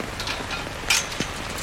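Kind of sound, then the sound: nature, rain falling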